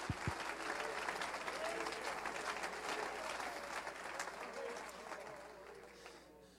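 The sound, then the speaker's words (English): An audience at a church service claps hands steadily, a dense wash of many overlapping claps at full strength that gradually tapers off in the last second or so. “Clap your hands.”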